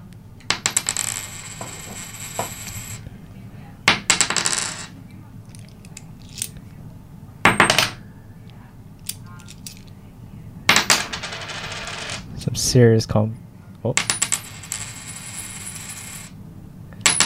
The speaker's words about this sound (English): You can stop dropping coins. I'm really enjoying it. Okay, that's all the coins.